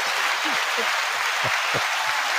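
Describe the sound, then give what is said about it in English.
A crowd claps steadily in a dense, unbroken wash of applause, with scattered voices whooping and cheering over it throughout. “Oh yeah, let me hear a cheers.”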